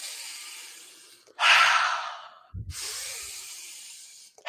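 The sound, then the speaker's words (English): Slow, deep breaths: a soft airy inhale through the nose followed by a stronger, rushing exhale through the mouth, then another long inhale through the nose, with no talking. “So now you're breathing in through the nose, out through the mouth. So deep breaths.”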